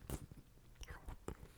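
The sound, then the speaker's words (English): Chewing of a Hershey's Cookie Layer Crunch Caramel candy bar: a few crisp bites and wet, smacking mouth sounds in quick succession, fairly quiet overall. “It has a chew and a caramel crunch to it.”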